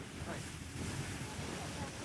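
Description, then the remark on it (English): A boat pounds through big, rough ocean waves going out to sea, with a steady, loud roar of rushing water and wind buffeting the microphone throughout, continuous with no clear pauses. “I would go a little slower when I hit the wave, maybe.”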